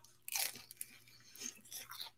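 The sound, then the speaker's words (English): Loud crunching as a crisp Panda Express chicken egg roll is bitten and chewed, with a sharp burst of crackling bites followed by a few more irregular crunches and soft chewing sounds. “Panda's Express chicken egg roll. So crunchy.”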